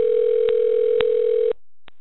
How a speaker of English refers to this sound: Who's phone ringing? Somebody.